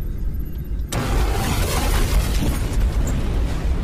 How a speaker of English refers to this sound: Explosions in the rear of Fat Man started to spread. The secondary explosions working their way forward in a series of dull booms.